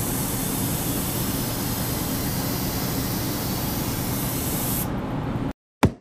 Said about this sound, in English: She's putting the speckles on the big mixing bowl, the large mixing bowl. The sprayer is the same kind of sprayer that's used to apply paint to automobiles, a big sprayer. And we've got the drip size or the speckle size exactly adjusted.